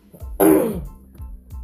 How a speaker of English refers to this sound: Holy shit, all that coughing is from Dab. One side dabbing.